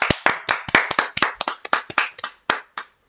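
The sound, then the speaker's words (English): People clap their hands in a brisk, uneven burst of sharp claps, loud and crisp, lasting a few seconds with no talking over it. “Let's take a moment and clap for that.”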